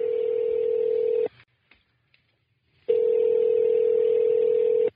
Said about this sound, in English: It's exciting. I'm like, I know. I'm excited. Look, this phone ring has got drama to it.